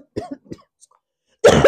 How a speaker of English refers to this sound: Excuse me, it's my turn to cough.